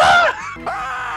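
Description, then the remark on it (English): A person's short, shrill, loud screamed vocal burst, used as their buzzer to buzz in during a quiz game. It drops briefly, then rises again into a sustained strained wail, like a game-show buzzer. “I'm not Stu. That's my buzzer.”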